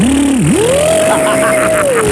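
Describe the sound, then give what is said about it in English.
A voice imitates a blender during a sound-imitation game: a steady buzzing hum that dips briefly, then climbs to a higher, sustained whir as if the blender is speeding up, ending with a slight drop in pitch. “All that's happening right now, do blender again more.”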